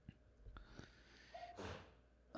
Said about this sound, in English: Sorry. For effect. You can sneeze all you want.